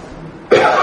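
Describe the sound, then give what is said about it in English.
A single harsh cough from a person giving a lesson bursts out abruptly after a moment of near silence, loud, with its breathy rasp carrying through to the end. “I'm being done in by my cough for a change.”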